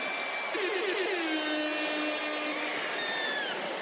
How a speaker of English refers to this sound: Nothing like an air horn at the exact moment you commit to share your life with someone.